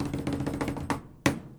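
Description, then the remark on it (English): A quick drumroll of rapid taps on a desk, rattling evenly for most of a second, then a louder thump and a final sharp knock that rings briefly. No voices. “The answer is, desk roll, please.”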